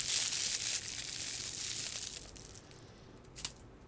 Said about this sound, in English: We'll do some ASMR. When you play with your cat on podcasts, it's called ASMR. This is one of the crinkly, fluffy balls.